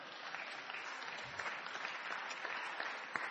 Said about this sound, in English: Clap for me.